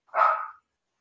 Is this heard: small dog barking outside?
yes